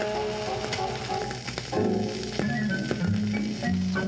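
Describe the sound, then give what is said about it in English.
Heavy rain pours down in a steady, dense hiss from start to finish, with sustained tonal notes like music playing over it. No one speaks. “They're swimming in the rain.”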